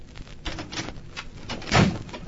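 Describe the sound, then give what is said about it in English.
A door is closed and quickly bolted: a few softer scraping and rattling handling sounds, then a firm thud near the end. There is no talking. “Closed the door and bolted it quickly.”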